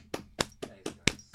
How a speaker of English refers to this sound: Let's all give him a fucking round of applause, baby.